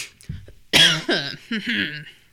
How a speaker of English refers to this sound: Clear my throat.